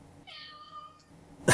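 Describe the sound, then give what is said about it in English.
A single drawn-out cat meow, clear, lasting under a second, followed moments later by a sudden loud, harsh burst of noise. “Your number two is meow.”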